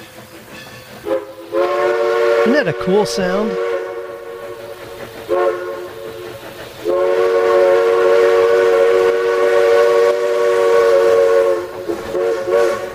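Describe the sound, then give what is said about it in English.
A steam train's whistle blows in long, harmonic blasts, several sustained calls with short breaks between, over the rumble of the running engine. A person briefly speaks partway through. “Here's a steam train.”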